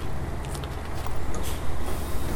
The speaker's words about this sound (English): Careful. Oh, bus.